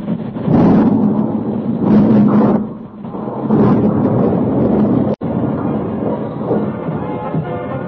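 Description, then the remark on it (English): A loud crash of a supply train, carrying no passengers, going off a bridge: a heavy, continuous rumbling roar with surging bursts of crashing noise, broken by one sharp momentary cutout near the end. No one speaks. “He saw it thunder close, saw the bridge in full relief in the train's lights, and then...”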